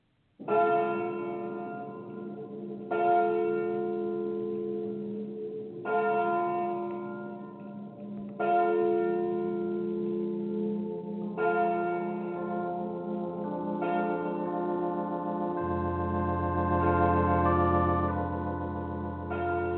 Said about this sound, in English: It was a joke, if you can call a church bell a joke. Oh, it was still to be heard, but it had a different sound, especially if you were a priest.